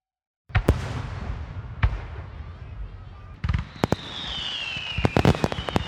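Fireworks, set off by lighting a fuse, explode in a series of sharp, loud bangs and crackles, with a high whistling streak descending partway through and a busy outdoor rumble between blasts.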